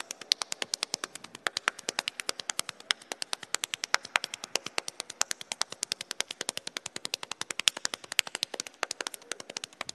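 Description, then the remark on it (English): Fast, steady hand clapping and slapping on the body in a hand jive rhythm, sharp crisp smacks repeating several times a second for the whole stretch, with no voices. “A little bit of hand jive.”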